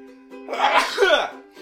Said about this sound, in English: Sorry, I had to sneeze.